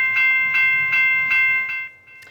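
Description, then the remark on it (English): A Burlington Northern train sits stalled at a rail crossing in Crescent Beach for more than two hours as a steady, rhythmic ringing pulses about every half second over a low rumble, loud, then fades out near the end. “A frustrating and potentially dangerous situation in Crescent Beach today when a train became stalled on a crossing for more than 2 hours.”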